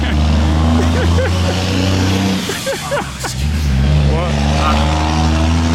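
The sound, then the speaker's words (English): A heavy construction truck rumbles past, its loud, steady engine drone briefly dipping midway before swelling back to full strength. “Well, one more after this construction truck.”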